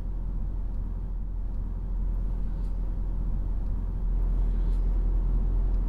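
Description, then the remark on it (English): A Mercedes SLS AMG sports car driven on the Goodwood circuit on a fine day, heard from inside as a steady, deep engine and road rumble that holds constant and swells slightly louder near the end, with no talking. “Gareth Drives Goodwood in an SLS AMG”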